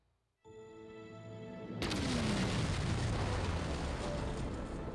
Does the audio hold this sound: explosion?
yes